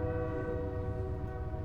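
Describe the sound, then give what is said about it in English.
A train horn sounds in one long, steady blast over a deep rumble of rolling rail cars, loud, with no one talking. “We got another train coming, guys.”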